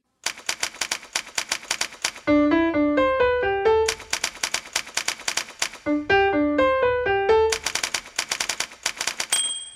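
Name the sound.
typewriter clacking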